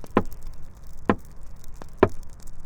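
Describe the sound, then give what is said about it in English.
Three sharp, loud knocks, evenly spaced about a second apart, with a faint softer tap just before the last one and quiet background between them. “Last night I heard the knocks inside. Right by my bedside. Three still, loud knocks like this.”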